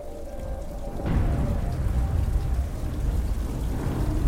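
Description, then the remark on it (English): Heavy rain pours down steadily, a dense wash of hissing drops over a low rumble, swelling louder after the first second and continuing unbroken, with no voices. “The pelting rain, the wife's pudding, the new bridle, even the match against the Squire Jeffson, all were forgotten.”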